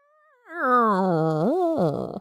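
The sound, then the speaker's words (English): A person mimics a cat with one long, drawn-out meow, a fairly loud vocal that slides down in pitch, then swoops up and wavers at the end. There is no other sound. “And good thing I'm also a ghost cat, and I can grant one more wish.”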